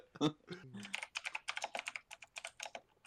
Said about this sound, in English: are you talking about the buttons on my arcade box I built for my simulator?